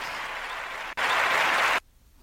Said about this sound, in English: That's me kind of clapping.